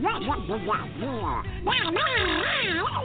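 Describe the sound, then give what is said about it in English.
A man's voice does a raspy, garbled Donald Duck impression, a continuous stream of quacking, warbling syllables rising and falling in pitch, fairly loud. “I used to do the voice of Donald Duck for many years.”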